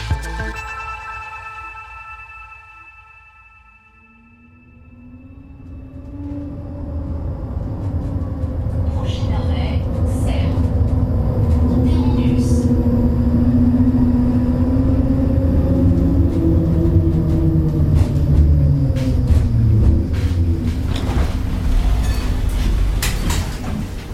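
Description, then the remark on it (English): A tram running from central Geneva to the main entrance of CERN hums to a near stop, goes briefly quiet, then pulls away with a rising electric motor whine gliding upward over a steady low rumble, staying fairly loud. “stepping off the tram that takes you from central Geneva to the main entrance of CERN, you could easily miss the fact that this is where thousands of scientists are hard at work, building the future of physics.”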